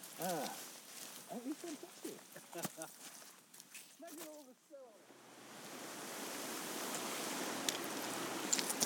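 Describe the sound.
A small waterfall on Gatekill Beck, below Hall Fell, rushes steadily on a sunny autumn day, a broad continuous hiss that swells to fill the second half once voices talking over the first few seconds fall quiet.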